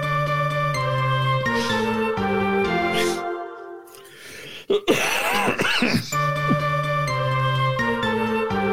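Upbeat music plays, briefly cuts out, and a loud, close cough or throat-clearing bursts through before the music starts up again.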